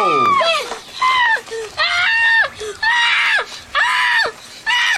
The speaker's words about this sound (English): Yeah. He's screaming too loud.